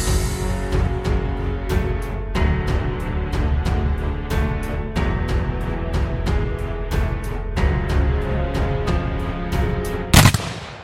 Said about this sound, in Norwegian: Kanonkulene suste overalt fra de engelske skipene der de lå på en lang rekke og skjøt mot handelsskipene fra Nederland. Enkelte av husveggene på husene innerst I vågen ble smadret av kanonkuler som hadde bommet på det opprinnelige målet.